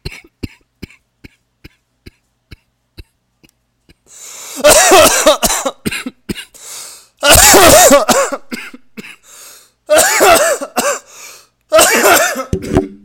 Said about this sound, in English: Damn, man. I coughed right in y'all faces.